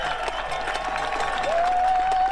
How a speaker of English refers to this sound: He's on top of the ladder. Yep, he's on. Big crowd cheering.